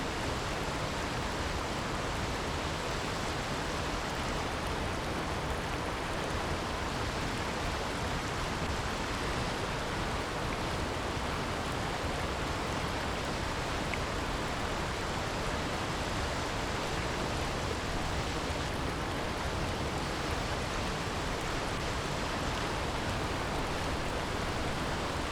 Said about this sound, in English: It's getting louder and louder as more and more water comes rushing by me as I'm making my way to this amazing waterfall.